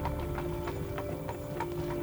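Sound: horse-drawn carriage hooves clip-clopping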